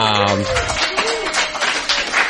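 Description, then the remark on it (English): A brief spoken voice gives way to an audience clapping in response to a line from the speaker, a dense, steady patter of many hands that stays fairly loud for about two seconds. “I thought in my head about that line and knew everyone would clap.”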